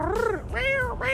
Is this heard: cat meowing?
yes